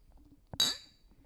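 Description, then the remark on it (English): A single bright, crisp clink of glasses of Bloody Marys touching in a toast, with a ringing tone that fades over about half a second against a quiet background. “Usually it's wine, but today we are drinking Bloody Marys. Cheers. Cheers.”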